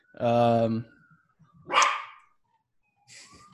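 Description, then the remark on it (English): A dog lets out a drawn-out, tonal bark, followed by a sharper, rougher bark and a softer third one after a pause. “Just had to pause it for a sec to release my dog back into the wild.”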